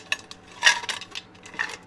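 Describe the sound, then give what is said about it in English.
Ice cubes left over from a diet cherry Pepsi clink and rattle against a glass in a few bright, irregular bursts, with one louder jangle near the middle and no one speaking. “I had a little diet cherry Pepsi in my glass, but now it's just ice, so yeah, I'm gonna crunch on it from time to time.”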